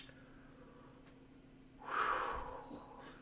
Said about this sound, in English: Hey, do me a favor and breathe real fast. There you go.